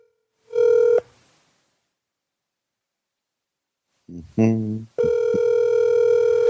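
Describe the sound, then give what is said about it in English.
An outgoing phone call rings out on the line: a short electronic ring tone, a long silent gap, a brief voice, then another sustained ring tone that goes unanswered. “Oh, we're calling him up.”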